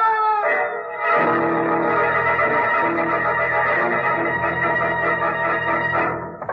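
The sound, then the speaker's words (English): A long, piercing scream from upstairs holds steady at a high pitch for about six seconds, loud and harmonically rich, then breaks off abruptly. No one speaks over it. “Screams came from upstairs here somewhere.”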